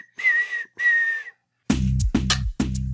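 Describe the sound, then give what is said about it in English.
Two sustained whistled notes, each about half a second, ring out clearly from a song, then loud, punchy music with heavy low-end hits crashes in. “All you need to hear is a little whistle part.”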